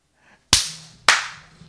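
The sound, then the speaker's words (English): Two sharp, loud smacks of a bat hitting a person, about half a second apart, each cracking hard and then trailing off into a fading hiss, with no voices. “Well, this is a bat, not a hammer.”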